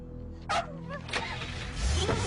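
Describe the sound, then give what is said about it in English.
A dog barks a few times in quick, sharp yips, with a steady low engine-like rumble underneath and no one speaking. “My dog is in there!”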